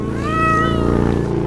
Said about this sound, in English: That cat was still alive. It's a little cat. That cat's a champ.